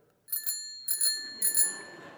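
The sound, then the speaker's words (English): A small handlebar-style bell on a walker is rung three times in quick succession, each bright metallic ding sustaining a shimmering ring, with no talking. “The bell is supposed to have someone come running right away when I ring it.”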